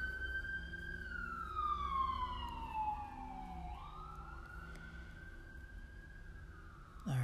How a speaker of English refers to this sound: these sirens. Give it a second.